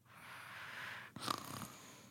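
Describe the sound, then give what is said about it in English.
Someone imitates their cat's snoring: a long, breathy inhale followed by a rough, fluttering snort-like exhale, one cycle, fairly quiet, with no talking. “my cat literally wakes me up because of his snoring”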